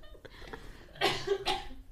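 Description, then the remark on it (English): Two fairly loud coughs, one right after the other, with a raspy breathy texture and no one speaking around them. “My turn to cough.”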